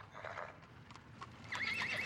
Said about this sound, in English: A coach with four horses had drawn up beside us.